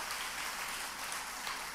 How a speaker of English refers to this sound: And can we just give the baptism candidates one more round of applause? Come on. Even the spontaneous ones, man.